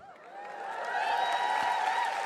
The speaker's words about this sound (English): And you are cheering yourself there because I barely ever download it.